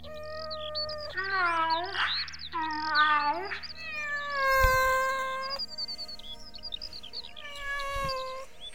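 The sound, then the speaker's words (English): A female cat meows repeatedly in a series of drawn-out, wavering calls, fairly loud, with short pauses between them and a low steady hum underneath. “Oh, she's just sick of the cat food you've been buying.”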